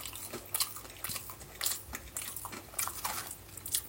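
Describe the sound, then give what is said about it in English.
Someone bites off about half of a mini fillet burger with supercharger sauce and chews it, with a series of wet, crunchy munching sounds repeating in an uneven rhythm, fairly loud and with no talking. “He just bit half this thing.”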